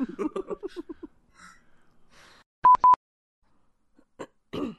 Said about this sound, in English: Kind of coughs. Sorry, guys.